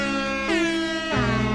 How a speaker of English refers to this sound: What would you call that thing? That's an air horn that they use at games.